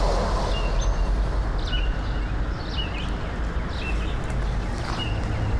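A sparrow of unidentified species, in sticker bushes and Japanese pine trees, sings a series of short, high chirps at roughly regular intervals around 5:45 in the evening as it starts to get warm. The chirps are fairly faint against a steady, loud low rumble of background noise.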